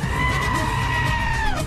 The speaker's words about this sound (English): Is that … or the goat? That was the goat.